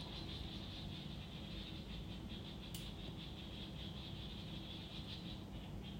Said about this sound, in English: The sounds of the birds at 5:44 in the afternoon here in Chiang Mai, Thailand.